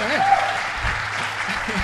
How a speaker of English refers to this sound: It's okay to clap. Y'all can do that. Oh, no. All right. There we go.